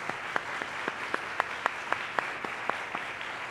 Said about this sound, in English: And I really want to recognize the active and past military that's in this room. So would you mind standing for me and let's give you a round of applause? If you're a past or present military, give them a round of applause.